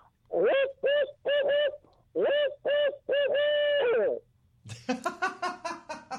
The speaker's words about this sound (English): An owl just flew out on the ledge here.